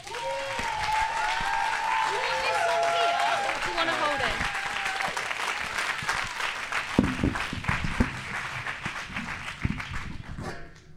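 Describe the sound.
A crowd at a morning Releasing the Real You session applauds a speaker steadily, dense clapping filling the whole stretch with some cheering voices rising early on, then thinning into scattered claps toward the end.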